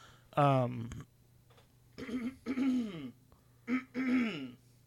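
A person clears their throat several times in a row, fairly loud, with short voiced rasping bursts separated by brief pauses and no speech.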